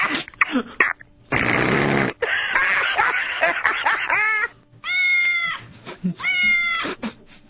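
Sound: cat meowing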